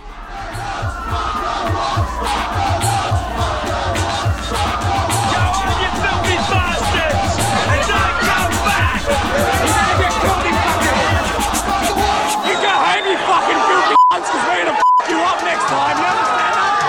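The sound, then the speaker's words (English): A loud, dense crowd of many mainly young people at Cronulla Beach in Sydney's south shouts and chants continuously during rioting, a rowdy roar with rising yells and cries layered over a constant babble, ending with a couple of sharp bursts. “Large numbers of mainly young people had gathered to, in their words, reclaim Cronulla Beach from gangs of youths”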